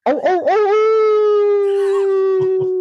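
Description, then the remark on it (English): A person does a loud wolf-howl imitation: a few wavering yips at the start, then one long, steady sustained howl that carries to the end with no talking. “So that was fairly good, I think. Howl, but it's close enough.”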